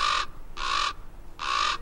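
A common raven, soaring against a blue sky over the hot, arid desert of the American Southwest, gives three loud, harsh croaking calls in slow succession, each a short rasping burst with brief gaps between, with no other sounds.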